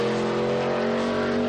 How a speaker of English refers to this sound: Ooh, listen to the sound of those cars flying around the track.